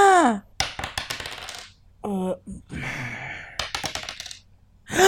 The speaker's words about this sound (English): That's a pretty big move. We got to roll 2d6 to see where we are with that.